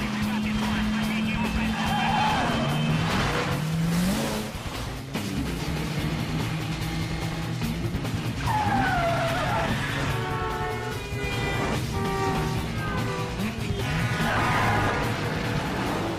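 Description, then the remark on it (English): Loud, continuous engine roar from a car racing at high speed through the streets of Moscow, with repeated sharp, pitch-bending tire squeals and skids cutting through in the second half as the chase swerves along. “Not to do with special effects or visual effects or spinning cars, but just what it would feel like if you were in a high-speed chase through the streets of Moscow.”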